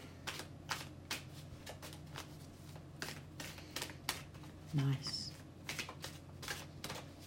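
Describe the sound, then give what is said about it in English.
Steady riffling and snapping of a deck of tarot cards being shuffled, crisp papery bursts repeating for several seconds, with a brief low murmur partway through. “Just get another shuffle on.”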